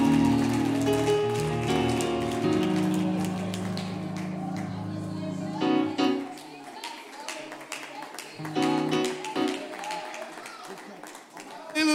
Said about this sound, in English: Clap your hands right now for everything that the Holy Ghost has done. That's it. Go ahead and rejoice.